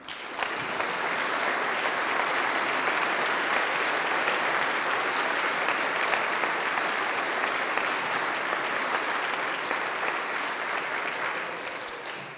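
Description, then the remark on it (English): Sustained applause from an audience welcoming members of the Goshen College Board of Directors at an inauguration event, a dense steady patter of many hands clapping at an even loudness for about twelve seconds, with no voices standing out. “Board members, if you would, please stand and let's welcome them with applause.”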